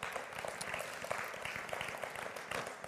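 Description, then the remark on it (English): An audience breaks into steady applause for the Lord after a young woman's public declaration of her faith, many hands clapping at once in a dense, even wash of sound that holds at a moderate level throughout. “I say we give the Lord an applause.”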